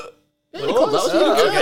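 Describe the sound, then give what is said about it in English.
A strained attempt at a burp, made by sucking air inward rather than breathing out: a rough, warbling throat sound that starts abruptly after a short silence and drags on for just over a second. “Yeah, oh, I was trying to burp.”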